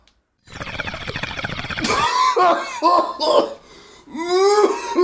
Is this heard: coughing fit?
yes